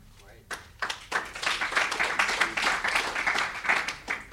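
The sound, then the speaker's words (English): A crowd breaks into applause: scattered claps begin after half a second, then swell into a steady, dense patter of many hands that holds strong to the end, with faint voices mixed underneath. “And he's been giving him a clap because he's been doing amazing work on hosting.”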